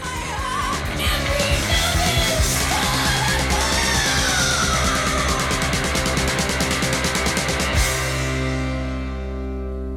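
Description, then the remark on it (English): A singer screams a high, strained, pitchy B-flat note over loud, dense rock music, then slides the pitch downward before the band drops into a sustained chord. “because he's sort of just screaming there”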